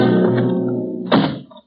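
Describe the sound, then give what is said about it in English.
A low, sustained rumble gives way to a single heavy thud as the door to the roof bangs open, followed by a brief fading rattle. No one speaks. “There it is. The door to the roof.”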